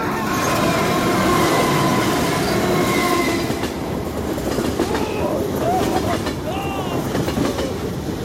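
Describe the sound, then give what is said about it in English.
A train rumbles loudly past on the tracks, a steady heavy roar with clattering wheels and faint metallic squeals, continuous throughout. “I think the train is on this track.”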